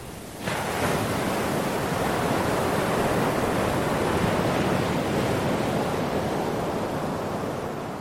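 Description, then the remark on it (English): Ocean waves crash against rocks at Whatipu, surging 4 or 5 feet over the rock ledge, in a loud, continuous roar of surf that starts abruptly and churns steadily throughout, with no voices. “The waves are coming up 4 or 5 feet over where you're standing”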